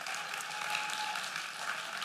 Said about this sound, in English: Sure, give her a round of applause.